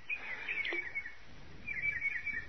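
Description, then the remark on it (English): Birds playing in a fish pond chirp in quick, high bursts, one flurry early and another near the end, fairly faint against a soft, steady outdoor background with no one talking. “What's that? Oh, birds playing in the fish pond.”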